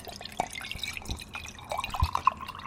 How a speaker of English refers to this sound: So I'm going to pour a little Pinot Gris from Duane Reade.